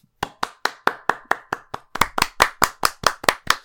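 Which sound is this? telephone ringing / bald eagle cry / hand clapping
hand clapping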